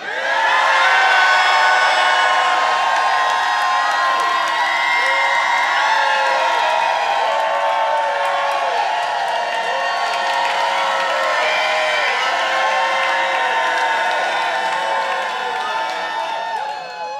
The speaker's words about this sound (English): And then the entire community of Israel, help me preach, started shouting.